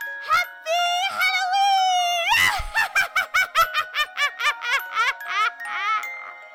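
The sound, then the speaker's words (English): A high, shrill witch-like Halloween shriek from a woman's voice, starting with a sustained wavering note and breaking into rapid cackling bursts, loud with no other sounds. “So I'm just going to give my best witchy happy Halloween shriek that I yes.”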